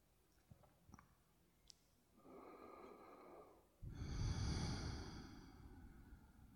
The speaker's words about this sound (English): Let's take a few breaths here, just feeling, listening, breathing.